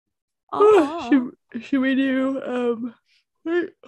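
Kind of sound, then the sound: human body sound, person yawning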